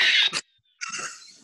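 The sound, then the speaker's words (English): A person imitates a pig, like Porky Pig, with two harsh, nasal snorting grunts: a short one, a brief pause, then a longer rasping snort that trails off. Fairly loud, with no talking. “I'm going to sound like Porky the Pig.”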